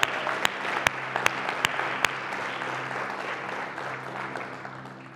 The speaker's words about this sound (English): I did some orientations with some guys on Friday morning, and so I'm sitting with these four guys that are going to get baptized, and I think there's seven baptism candidates. Can we give a round of applause for that?